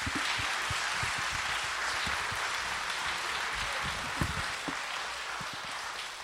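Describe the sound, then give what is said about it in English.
A crowd applauds steadily, many hands clapping in a dense, continuous wash of sound that holds at an even level for several seconds with no voices. “Can you give them a round of applause?”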